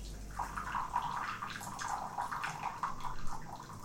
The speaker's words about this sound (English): He spoons powdered green tea into a bowl with a slim bamboo spoon and pours water onto it.